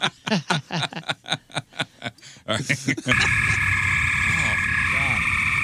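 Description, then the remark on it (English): A rapid series of croaking, pulsing calls, then a dense, steady chorus of tree frogs trilling and chirping together outdoors at night, heard through an opened window, loud and continuous with a high ringing tone running through it. “Is that a tree frog? Or what is that?”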